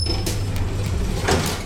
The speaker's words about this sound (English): The lift reached the lobby and the doors slid open.